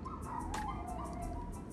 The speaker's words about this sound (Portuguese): os latidos de cão que se ouvem em fundo se devem ao facto desta gravação estar a ser feita a partir de um sótão, numa casa de verão no norte do país.